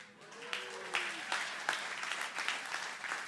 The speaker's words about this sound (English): That's sort of a golf clap. But obviously you didn't have any relatives there. But if you did have relatives, you probably would have clapped like, I'm only a man.